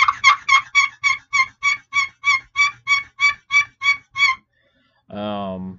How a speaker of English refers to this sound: So the first call is going to be a box call. So basically, you just kind of rip it back and forth.